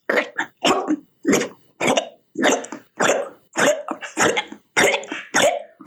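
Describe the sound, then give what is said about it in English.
A human voice imitates a cat vomiting: a rapid, rhythmic series of about ten harsh, gagging heaves, steady and fairly loud, with no other talking. “all right, so you might want to fast forward through this because I'm about to emulate vomit noising.”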